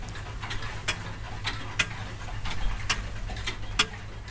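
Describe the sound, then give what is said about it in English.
Antique pocket watches from about 1800 to 1820 ticking after being given a tug, a steady, slightly uneven run of crisp ticks with a few sharper, brighter clicks mixed in over a low hum; no one speaks. “And as soon as I gave the tug, one or two of the watches started to tick, as if they were looking for attention.”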